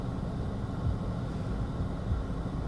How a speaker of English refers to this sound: Sorry, I had to stop because, like, a truck was going by me, and I was like, this dude's gonna hit my car. Like, wow. I'm pretty sure he was, like, at least, like, a centimeter away from me. Or, from my American friends, an inch.